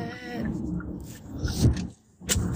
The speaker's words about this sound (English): You hear everything falling off the passenger seat because I just slammed on the brakes.